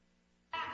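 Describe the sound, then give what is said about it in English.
A single short, loud cat meow played in a guessing game bursts in abruptly after a quiet moment, bright, cut off almost as soon as it starts. “It was cat.”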